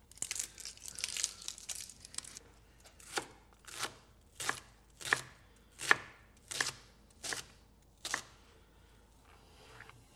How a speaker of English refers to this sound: So now I've got my chard ready. I'm going to dice my shallot, or as they say in Britain, my shallot.